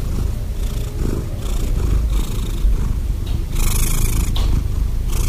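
A cat purrs steadily, a continuous low rumbling vibration with a faint breathy rasp, pulsing gently with each breath in and out, no voices present; the purr comes from the cat forcing air into its throat so the vocal cords vibrate.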